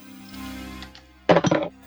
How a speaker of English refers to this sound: before you do that, roll me a d10.